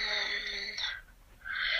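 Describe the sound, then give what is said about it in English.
Heavy breathing right up against a microphone: a long, loud, hissy exhale, a brief quiet pause, then another rushing breath starting. Close and airy, with no talking. “you're breathing right into your mic.”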